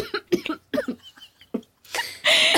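A woman gives a fake cough that sets off real coughing: a quick series of short bursts, turning harsher and louder toward the end with a raspy, breathy final hack.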